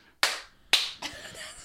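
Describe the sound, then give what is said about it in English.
Three sharp hand slaps in quick succession, like high fives: two crisp, loud smacks about half a second apart, then a softer third followed by a brief rustle of movement. “It's okay, three, it's three high fives in a row.”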